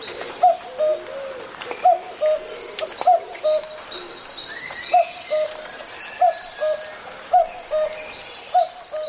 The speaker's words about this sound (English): Yes, the cuckoo call. I always ask every year, have you heard the cuckoo? I heard them,